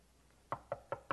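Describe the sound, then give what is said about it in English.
Four quick, firm knocks on a wooden door, evenly spaced, following a moment of quiet room tone. “It's what you do when a guest knocks on your door at your Christmas party.”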